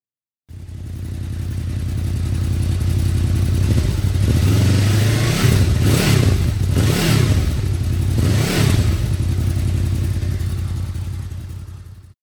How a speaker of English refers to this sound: All right, now we have the GPR exhaust with the DB Killer still inserted.